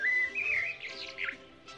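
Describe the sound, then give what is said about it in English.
A brief burst of chirping from a little bird held in someone's hand: a high whistled note that slides upward, then a few quick warbling tweets fading out, with no one talking. “Give me the bird. Okay, senor, here it is.”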